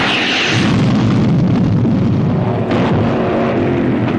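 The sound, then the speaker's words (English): The engine of a jet-propelled J-47 dragster roars loudly and continuously, a deep, rumbling blast that swells within the first half second and holds steady, overpowering, with no voices. “See the jet-propelled J-47.”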